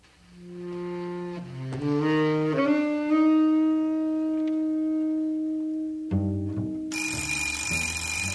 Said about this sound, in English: Alarm clock here ringing so damn loud, you must think you got to wake up a crowd. You ain't got to wake up nobody but me.